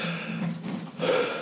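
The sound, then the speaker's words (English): A person demonstrating a deep-breathing technique takes one deep, audible breath in, then pushes it out with a rush of air, fairly loud, with no talking. “it teaches like he does a lot of like breathing techniques and stuff too, like taking like 35 really deep breaths where you just go.”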